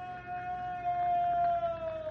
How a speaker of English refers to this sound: There it is again. Was a scream. Sounds like it came from right up in the middle of the fire area, Bill. No, it came from beyond that. Up among those rocks.